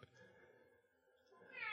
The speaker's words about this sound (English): And the cat won't shut up. Sounds like she's having a good conversation. I wish I could as well. I'm not sure who she's talking to, but it's got to be going better than this.